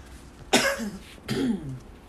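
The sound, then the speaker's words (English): Two sudden, fairly loud coughs about three-quarters of a second apart, each a sharp burst trailing off into a raspy exhale, with no talking around them. “Not sure why I'm coughing all of a sudden.”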